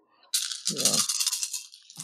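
dice being rolled

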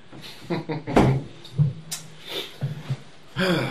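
door being closed

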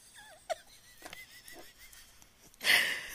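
burp

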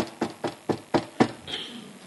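knocking on a door

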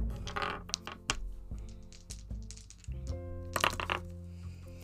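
dice being rolled

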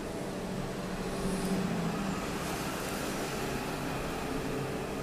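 truck passing by outdoors

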